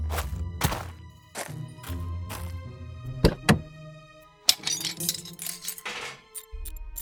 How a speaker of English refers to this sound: That's a perfect hubcap, and you are a perfect little dog. Aw, and you dropped it right in the bathtub.